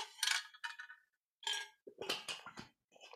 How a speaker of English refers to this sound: I'm going to get a drink of water here.